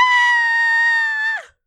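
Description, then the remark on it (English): A shrill, sustained scream of fright holds a steady high pitch for over a second, loud, then breaks off with a quick downward slide into silence. “In the darkness, we see that there's a pony rocking in a rocking chair. And we scream...”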